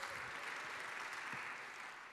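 A crowd applauds steadily, a dense, even wash of clapping that stays loud for the whole stretch and eases slightly toward the end, with no voices standing out.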